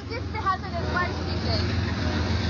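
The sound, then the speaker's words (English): A long freight train of over 100 cars, many carrying hazardous, flammable materials, rolls steadily past about 300 metres from a train accident site, a continuous heavy low rumble with faint metallic squeals on top and indistinct voices murmuring in the background. “And I lost count at 100 cars, but these cars were just going past and lots of them were hazardous, flammable materials.”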